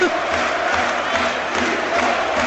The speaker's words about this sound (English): There's more pigs rain down on the pitch. And you can hear the crowd, I'm sure. We could have a considerable delay here.